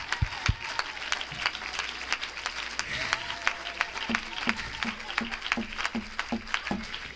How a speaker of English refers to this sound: Oh, let's clap our hands and give him un aplauso praise. Al Señor.